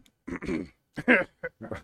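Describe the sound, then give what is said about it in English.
Several rough bursts of coughing in quick succession during a tobacco tasting, a longer hacking fit followed by a few shorter coughs, with no talking. “In between coughs.”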